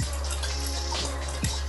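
Water pours steadily into a glass of vodka, a continuous splashing trickle lasting under two seconds with no voices.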